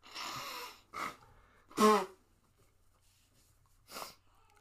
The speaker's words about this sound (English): All right, I'm gonna blow my nose.